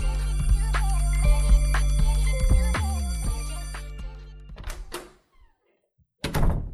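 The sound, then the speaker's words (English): A door creaks open with a long, wavering groan and a few dull thunks, followed by a couple of sharp knocks after a brief silence. No voices, clear. “Yo, the bell is rung. The door is open. Have a seat.”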